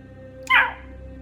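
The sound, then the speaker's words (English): A voice imitates an agitated raven with one sudden, harsh squawk that sounds almost like a dog's bark. It is loud, lasts a fraction of a second, and fades quickly. “I straight up thought that was someone's dog.”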